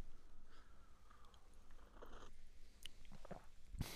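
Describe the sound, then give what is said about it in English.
Quiet mouth sounds of someone sipping hot decaffeinated West Cork coffee from a mug, with soft slurps and small wet clicks, then a brief louder gulp or clink near the end. “Got a bit of West Cork coffee in my hand here, and it's just begging me to take a sip of it, so I'm going to take a little sip of it there now.”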